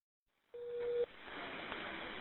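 A phone call to 911 connecting: one short, steady electronic tone sounds for about half a second, then gives way to the continuous hiss of an open, narrow-band telephone line.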